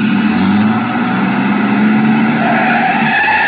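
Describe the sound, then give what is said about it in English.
A truck engine is started and roars loudly and steadily while tires skid and squeal over it, continuous for the full few seconds, with no voices. “He turned over the engine and switched on the lights before I could get clear.”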